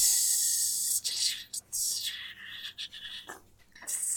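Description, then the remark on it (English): Bacon sizzles in a pan with a steady, bright hiss and scattered crackles, rising and dipping briefly in loudness over a few seconds, with no talking. “Hey, hey, guys, welcome back to Top That, as we are serenaded by the sound of bacon being cooked.”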